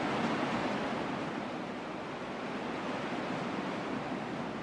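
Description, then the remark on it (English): A steady, continuous wash of ocean surf, a broad soft roar that holds an even level throughout with no distinct individual wave breaks and no voices. “Then returning your focus back to your breath and the ocean.”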